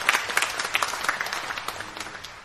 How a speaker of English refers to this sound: And yeah, let's clap. Let's welcome him one more time.